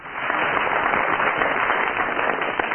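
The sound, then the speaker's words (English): A studio audience applauds steadily for Barry Cryer, judging who has tied the best tie: a dense wash of many hands clapping at a sustained, fairly loud level for a few seconds with no one speaking. “First of all, will you give your applause or otherwise for Barry Cryer?”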